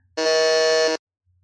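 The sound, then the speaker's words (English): A single harsh electronic quiz buzzer blares steadily for just under a second as two contestants buzz in on a Pikmin 4 trivia question, loud and rich in tones, then cuts off sharply into near silence. “Both buzz in first”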